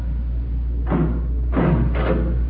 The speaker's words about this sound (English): We must be at the end of the tunnel. It's about time. His Highness was going to open the door.